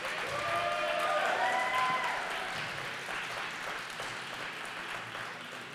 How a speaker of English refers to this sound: So can we give them another round of applause, please?